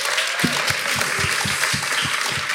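An audience applauds in a dense, steady burst of overlapping claps, loud and sustained throughout with no voices breaking through.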